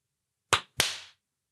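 Two sharp, bright hand claps in quick succession, the second a bit louder with a short ringing tail, alone against silence with no talking.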